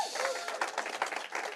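A church crowd applauds a speaker with dense, steady clapping from many hands at moderate volume, with a faint vocal sound briefly audible within it.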